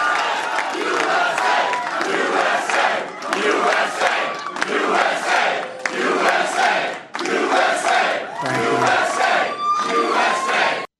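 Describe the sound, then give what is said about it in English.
A large crowd on New Hampshire primary night chants "USA" to President Trump in loud, steady, rhythmic bursts, the chant repeating about once a second and filling the whole recording with massed shouting voices. “And here's a little bit of the crowd chanting USA to President Trump.”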